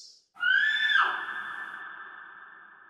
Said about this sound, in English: And you're not a bit surprised that halfway there, you hear a scream in the distance.